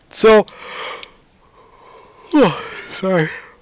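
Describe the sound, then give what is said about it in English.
A breathy yawn: a sharp intake of air, then a drawn-out vocal sigh that sweeps down in pitch and ends in a short groaning exhale. No one speaks. “Yawning on a podcast.”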